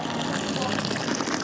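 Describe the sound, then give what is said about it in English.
A waiter pours two broths into a yin-yang-style hot pot, a steady, continuous splashing gush of liquid that holds an even level throughout, with faint restaurant murmur behind it. “Soon, a waiter who gives his name as Tomato comes to pour the two broths in a yin-yang-style pot.”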